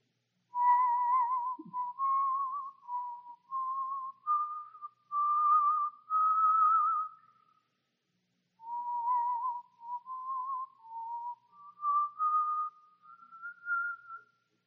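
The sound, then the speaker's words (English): Hudson Taylor whistles a slow, wandering tune, clear, in two phrases separated by a short pause, with no talking. “Taylor, how can you whistle when our friends and our co-laborers are out there facing death?”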